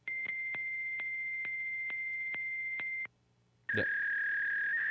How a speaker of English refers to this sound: It's a fax line. Yes, it is. That's what a fax line sounds like.